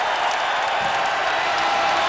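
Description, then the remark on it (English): A big basketball arena crowd of Illinois fans cheers in a dense, steady roar in the final seconds of Illinois's 85-70 win over Missouri, loud and sustained without a break, with no single voice standing out. “And listen to the Illini crowd.”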